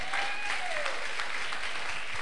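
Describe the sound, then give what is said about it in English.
A group of women claps steadily for Jesus in dense, overlapping applause that fills the whole moment, with a faint high tone gliding downward behind it and no voices standing out. “I think the sisters, this is the time for you to clap for Jesus.”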